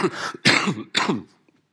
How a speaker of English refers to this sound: Excuse me, there's a few coughs coming this morning, so I don't know if we should need a prearranged signal so that your ears don't suddenly suffer. So I apologise beforehand.